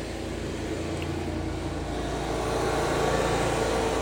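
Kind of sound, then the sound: machine, lawnmower running nearby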